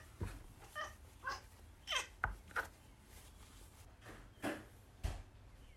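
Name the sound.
cat meowing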